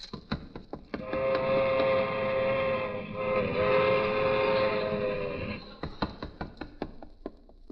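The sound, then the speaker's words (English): A train rumbles past while its whistle blows one long, loud, steady blast for several seconds, then fades into a series of rhythmic clacks of wheels on the rails. “Ah, little old Harry making his whistle stop.”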